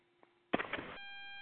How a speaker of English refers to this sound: Yeah, somebody might be getting their phone antenna near something else. It's funny how it's always that frequency pitch that comes through.